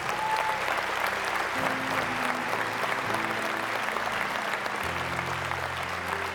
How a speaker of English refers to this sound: Give the Lord a hand clap right now.